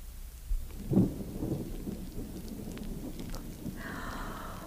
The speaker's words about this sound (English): Oh, my, sounds like a storm blowing up outside, doesn't it, children?